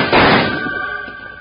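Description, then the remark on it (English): A single sharp rifle shot cracks out loudly, then trails off in a ringing, metallic decay that fades over about a second, in a Western shootout between a charging rider and Jingles. No voices are heard. “Just as Wild Bill and Jingles started to help Tommy Brown round up his two calves and head for home, a rider came thundering toward them with his rifle blazing. Jingles was quick to return the fire.”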